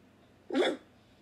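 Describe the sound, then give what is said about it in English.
A single short, husky bark rings out once, fairly loud, imitated by a human voice, with quiet stillness before and after. “Oh! Just one!”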